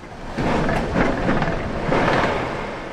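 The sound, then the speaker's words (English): A continuous, deep roar of Hurricane Ian's winds as it arrives in Florida, swelling in powerful gusts and rumbling steadily like a passing freight train, loud with no voices. “The sound, this just freight train whooshing noise, like the whole world is angry at you.”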